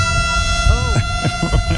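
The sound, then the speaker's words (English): Traditional Japanese parade instruments play: a loud, sustained reedy drone of layered tones, a wavering pitch bend, and a few rhythmic percussive thumps underneath, with a harsh, siren-like quality. “By the way, the Japanese parade, some of the music, too, the instruments, the traditional Japanese instruments.”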